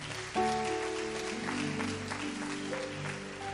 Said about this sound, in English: Somebody give Jesus a mighty clap of praise. Amen.